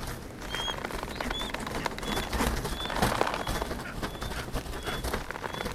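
Small birds chirp in short, repeated high calls every half second or so, set against a steady rustling, crackling background noise.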